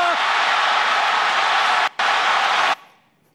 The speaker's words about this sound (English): That literally registered on the Richter scale, that crowd on that play.